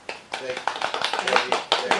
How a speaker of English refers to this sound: Productions squad, could we have a round of applause?